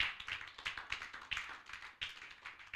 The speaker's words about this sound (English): Well, I thought you were clapping.